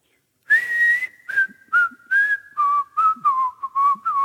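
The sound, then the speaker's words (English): A bright, clear whistled melody plays alone from a car radio in downtown Curitiba, a series of short sliding notes in a relaxed, bouncy rhythm, fairly loud with brief gaps between phrases. “Then suddenly, into the midst of our fighting, comes the unmistakable whistling”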